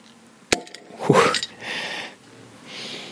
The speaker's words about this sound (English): I'm going to actually just open it here. This is one of those kind of like bottles that you pull the metal kind of lever thing and it pops open. So hopefully it's going to make a nice sound. And I'm going to put it up the microphone here.